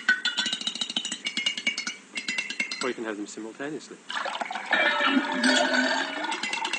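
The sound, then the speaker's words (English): Sampled tea-making sounds loaded into a music machine and played at once from its keyboard: water pouring and a spoon clinking and stirring in a cup, pitched to the keyboard, with a man's voice speaking over them. “So what the machine is loading now is the sounds of making tea. We've got, first of all, pouring water. Then we'll throw the spoon in.”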